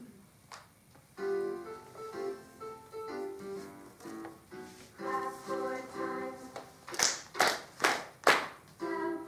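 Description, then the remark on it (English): A bright melodic tune plays, then several sharp hand claps ring out in a steady beat near the end, loud over the music, clapping along to the song as it instructs. “So you're just going to clap two times.”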